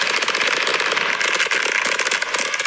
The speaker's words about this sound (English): Just run. Oh, run. Here they come. Here come fireworks. Indoor fireworks.